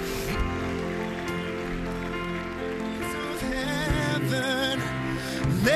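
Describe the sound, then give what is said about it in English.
A large church audience applauds steadily for people coming down to the front to give themselves to Jesus, a dense wash of clapping that runs the whole time, layered under loud sustained music with a singing voice rising near the end. “Let's give it up, church, for those who are coming down here.”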